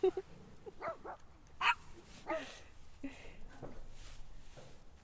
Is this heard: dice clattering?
no